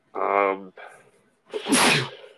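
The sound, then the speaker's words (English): A single loud sneeze: a drawn-out voiced 'ah' wind-up, a brief catch of breath, then a harsh, noisy burst that trails off. “bless you.”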